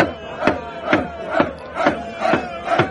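A crowd of kids shouting together in a steady, rhythmic chant, six loud bursts roughly half a second apart over a constant murmur of voices, as Native Americans walk into the crowd of kids.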